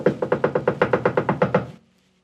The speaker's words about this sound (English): "Let us in! Please let us in," they begged, knocking loudly.